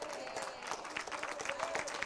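An audience claps in a dense, continuous patter of many hands, steady and fairly loud throughout, with a faint murmur of voices mixed underneath.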